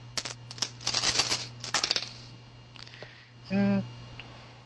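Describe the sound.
A handful of nine six-sided dice clatters and rattles across a hard surface in a dense, busy burst of clicks lasting a couple of seconds, followed by a few scattered taps and a brief voiced hum.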